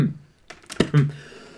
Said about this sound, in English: How's that for audio? People coughing all over it?